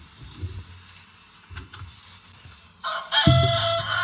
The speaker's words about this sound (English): Sounds a little hammered to me. Sounds like he has a hangover. Yeah, I think my rooster is a little more. So that starts at 4:45 in the morning. Here's my rooster.